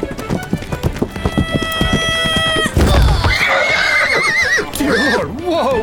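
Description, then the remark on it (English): Rapid hooves clip-clop, then a horse named Plato lets out a loud, wavering whinny with rising and falling pitch over a rumbling thud as a boy runs in front of it. “You ran directly in front of my horse!”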